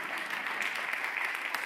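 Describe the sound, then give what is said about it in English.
Hand clapping from a single person in the audience at Northgate Christian Fellowship, quiet and fairly steady, forming a continuous soft patter of claps with no voices over it. “I got one hand clap.”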